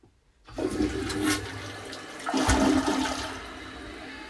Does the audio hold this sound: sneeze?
no